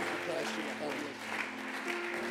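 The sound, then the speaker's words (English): A standing audience claps its hands as a preacher comes to the pulpit, a steady, dense wash of applause that continues throughout, with voices mixed in beneath the clapping. “Let's stand and clap our hands”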